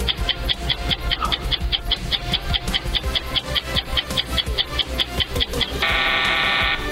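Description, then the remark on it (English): A steady, rapid ticking countdown beat runs for several seconds, then a loud, harsh quiz time-up buzzer blares for about a second near the end, during a quiz question on where the next Summer Olympics will take place. No one speaks. “Well, we're past the buzzer.”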